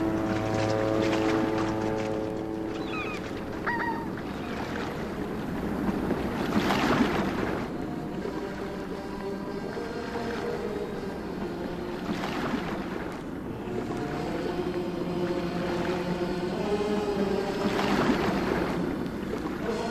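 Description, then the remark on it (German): A ship at sea with steady wind noise and waves washing against the hull, swelling into louder surges every few seconds; a low tonal hum sounds near the start, and no one speaks. “Stimmung auf See.”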